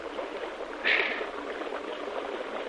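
Water swishes and splashes steadily as someone wades through a river, with men carrying rifles following, a brief louder slosh near the start and a continuous rushing wash underneath.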